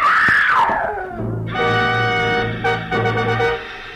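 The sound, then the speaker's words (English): An old woman screams inside a two-story wooden house on a cliff above the ocean, loud and high-pitched: a sweeping cry that settles into a long, strained, wavering wail lasting several seconds, with no talking. “Inside, I found an old woman whom I figured to be my client leaning against a half-open kitchen door, sobbing and clenching at the gingham apron she wore like it would keep her from screaming again.”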